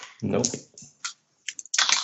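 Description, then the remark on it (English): During a tabletop role-playing game, dice clatter across a table in a few quick, sharp bursts of clicks as a roll is made to listen at a door, the last rattle longer and busier, following a short murmur of a voice. “Listen, yeah. Rolls.”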